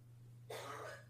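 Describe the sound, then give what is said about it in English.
A single short, breathy cough bursts out midway over a steady low electrical hum that runs throughout; no one speaks. “Can hear coughing, can't hear it.”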